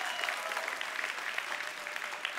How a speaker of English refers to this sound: I don't know how to take that clap, if you're glad it's done, or you're thankful what God did, or maybe a little bit of both.